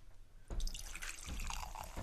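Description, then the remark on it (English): Fizzy Vimto soft drink pours and fizzes, a steady, crackly hiss of bubbles starting abruptly and swelling in a couple of gushes. No one speaks. “Oh, getting some lovely ASMR there. Fizzle, fizzle, fizzle. It's fizzy Vimto for anybody who doesn't know”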